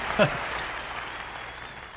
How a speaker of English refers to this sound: applauding your magic trick